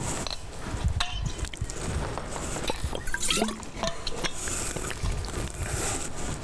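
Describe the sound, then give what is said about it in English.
Liquid sounds of drinking water being poured or sipped, with small splashes, drips and clicks scattered over several seconds against a steady background hiss. No one speaks. “can you bring my water, please?”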